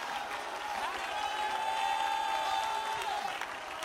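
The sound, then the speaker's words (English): A large crowd shouts and cheers together in a sustained shout of triumph and praise to God, loud and continuous, with a few voices standing out above the dense wash of sound. “Shout with a voice of triumph to God above.”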